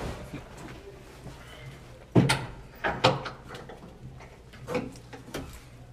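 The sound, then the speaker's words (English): A person closes a door with a solid thump, followed by a few lighter knocks and clicks as the latch settles, over a quiet room hum. “I'm going to close the door.”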